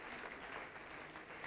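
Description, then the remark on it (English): An audience claps for Joe in a dense, steady burst of applause, many hands patting at once in a continuous crackling wash that holds level throughout with no voices on top. “Well, let's clap for Joe anyway, because Joe's awesome.”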